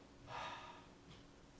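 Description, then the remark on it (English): A single soft, breathy yawn from one person, an airy drawn-out intake lasting about half a second, followed by a couple of fainter breaths. Quiet, with no talking. “And eventually, when I do wake up, and I yawn and”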